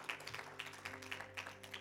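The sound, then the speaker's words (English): Hand clapping from a group as praise to the Lord, fairly quiet, with steady, overlapping claps continuing throughout and no voices standing out. “Come on, y'all give the Lord a hand clap of praise.”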